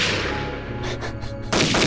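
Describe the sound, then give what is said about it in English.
A rapid burst of loud gunshots in a rap track being played, several sharp cracks in quick succession followed by a sustained roar of heavy firing, harsh over a noisy background. “Those gunshots are so loud”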